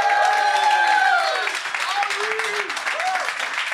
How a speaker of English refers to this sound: First of all, let's give a big round of applause to everybody who put Skankfest together, all right?